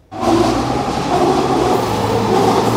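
A SkyTrain metro train at Metrotown SkyTrain station in BC rumbles past in a steady, loud roar with a low electric hum and a higher whining tone, starting abruptly and holding throughout, with no voices.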